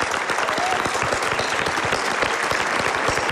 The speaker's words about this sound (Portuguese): E peço um aplauso especial